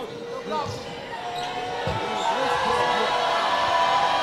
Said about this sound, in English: Crowd making a little bit of noise. Got to get that crowd back up.